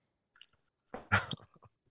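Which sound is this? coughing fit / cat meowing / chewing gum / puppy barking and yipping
chewing gum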